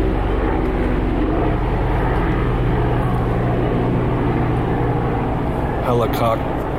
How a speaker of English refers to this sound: Helicopter. Does there have to be a helicopter right above me? Right now?